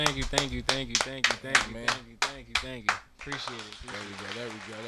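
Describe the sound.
A round of sharp, steady clapping, about a dozen claps at an even pace, fairly loud over a voice talking, then the applause fades and the talking continues; applause for a singer who is a guest on a show.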